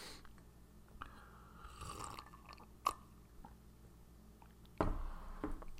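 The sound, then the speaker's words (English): A brief, soft slurping sip of coffee, followed by a few sharp clicks and a louder clunk like a mug set down, with otherwise quiet surroundings. “So let me take a sip of coffee and we'll dive into what we're talking about, what we're doing, all that type of stuff.”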